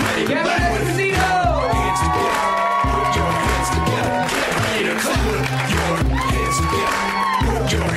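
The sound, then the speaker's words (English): A loud, steady crowd roar of cheering and whooping from the audience at the UCB fills the whole stretch, with scattered high shouts rising over a dense wash of clapping and voices. “Please get out the cat phones and please put your hands together.”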